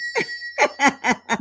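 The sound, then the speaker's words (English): A bell rings with a bright, steady metallic tone that lingers throughout, overlapped by a handful of short, rhythmic bursts of laughter. “Let me ring the bell for you, child.”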